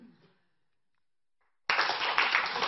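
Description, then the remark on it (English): An audience suddenly breaks into loud, dense clapping, signalling they have found the red vertical object in a visual search exercise, after a short bit of speech and a second of silence; the clapping keeps going steadily to the end. “Okay, yeah, now people are clapping a few times because there's a couple of extra ones.”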